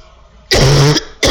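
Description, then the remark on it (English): A person sick with COVID coughs: a harsh, forceful cough with a rough, throat-clearing rasp, followed a moment later by the start of another hacking burst. “I went home only to get COVID, and predominantly it's ear pressure and coughing like I'm insane.”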